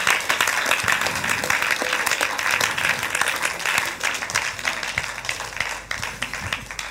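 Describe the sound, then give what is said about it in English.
An audience claps their hands for God in sustained, dense applause that stays steady and loud for the whole stretch, with many overlapping claps and no clear rhythm. “Clap your hands for God.”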